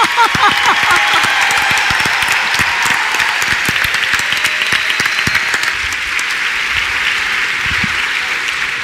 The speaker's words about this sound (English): Let's get a round of applause for our panel here.